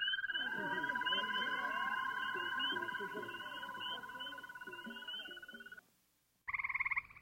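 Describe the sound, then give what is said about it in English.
A dense chorus of common garden toads trilling together, a steady high buzzing drone layered with warbling calls, then a brief pause before another loud burst of trilling. “And listen to the way they all get together into these toad choruses, all twirling away.”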